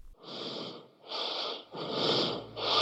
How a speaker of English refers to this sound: Recently, I got a voicemail from somebody who was breathing so heavily, I could hardly tell who it was.